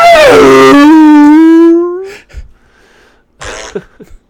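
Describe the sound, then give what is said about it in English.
A long, loud, squealing creak of a heavy vault door swinging open, its pitch sliding down and then slowly rising for about two seconds, followed by a few softer knocks and rustles. “Need some WD-40. Squeaky.”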